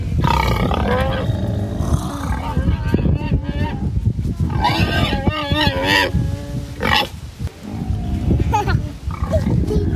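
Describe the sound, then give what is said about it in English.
Pigs grunt and squeal loudly and almost without pause near feeding time, the calls rising into harsh, strained squeals over a rumbling, noisy background with wind noise. “But just like I never really appreciated the range of the grunt of a pig.”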